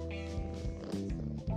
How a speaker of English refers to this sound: Here's a purring.